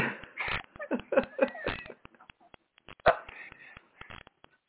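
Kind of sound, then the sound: animal, dogs barking and whimpering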